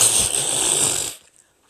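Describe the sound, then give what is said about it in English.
A voice blows a loud, buzzy raspberry imitating a fart, one sustained sputter of about a second that cuts off abruptly into silence. “But he would walk in front of me and just let it loose.”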